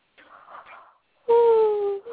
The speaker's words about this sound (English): Sorry. Mm-hmm. I did not mean to yawn.